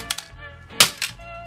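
Sharp hammer blows crack against a broken plastic cassette shell, smashed to get the tape out of it: a few bright impacts in uneven rhythm, the loudest strikes ringing with brittle snapping and rattling between hits.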